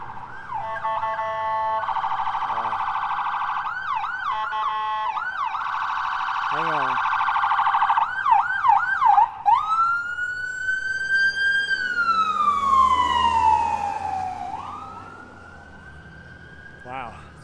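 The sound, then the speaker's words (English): Loud emergency sirens on a street, first rapid yelping and warbling tones from more than one vehicle, then a long rising and falling wail that swells as it nears and fades away. “What I've been doing lately with these sirens is trying to lower the audio in the video.”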